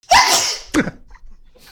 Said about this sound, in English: can I hear the sneeze, please?